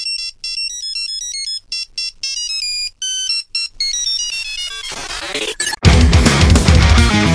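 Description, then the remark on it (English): A bright, beeping melody played as a Nokia 3310 ringtone: the riff from the start of a song in a quick run of short tones, then a fuller, louder burst of music kicks in near the end; no one speaks. “it's basically the riff from the start of …, but as like a Nokia 3310 ringtone”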